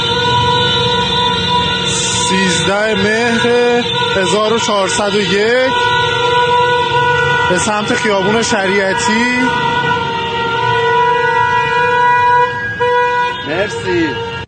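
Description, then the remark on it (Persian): Many car horns blare together at night on Shariati Street in Tehran, honked in protest on the 20th day of the uprising: long sustained tones layered into a loud, continuous din with a few sharper honks, while a voice speaks over the noise. “در تهران شبونه در خیابون شریعتی در 20مین روز خیزش مردم برای عروسی ننشون بوق میزنن.”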